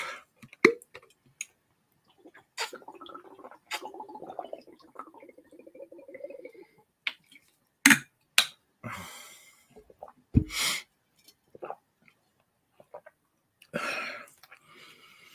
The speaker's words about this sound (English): Wait a minute here. Hold on. Let me get a sip of water real quick, man. Sorry about that.